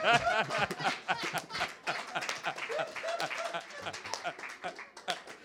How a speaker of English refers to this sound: Clap your hands for Amen. Alkışlayalım.